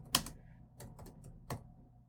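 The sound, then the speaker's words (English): Keys clatter on a computer keyboard in a few sparse, irregular taps, fairly crisp, with one sharper keystroke near the start and short pauses between the others, as a song title is typed in. “Typing it in.”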